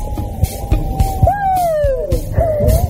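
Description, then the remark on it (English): A child inside a wolf den imitates a wolf howl, a long wavering high-pitched "woo" that slides downward, with soft thumps and rustling around it. “And you can howl.”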